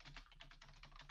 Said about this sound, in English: Vegetarian, and I'm typing quickly, so if there's a typo there, sorry.